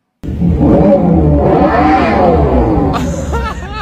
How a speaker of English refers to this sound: While other EVs are focused on keeping quiet, we amplified ours. Thanks to the patented Fratonic chambered exhaust, the output is going to be as visceral as those that came before it. 126 decibels of output.